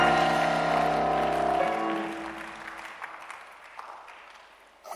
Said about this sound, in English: Anybody clapping, that is your blessing in the name of Jesus.